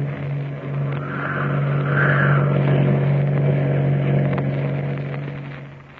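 A motor cruiser's engine drones steadily as it speeds across Iquique Harbor toward the Sea Hound, a low, constant hum that swells in after a moment, holds loud, then eases off slightly at the end. No voices.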